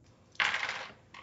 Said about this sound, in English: Give me a doves roll with three dice.